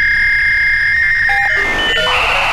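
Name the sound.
dial-up modem connection noise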